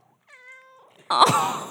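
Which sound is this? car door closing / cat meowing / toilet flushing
cat meowing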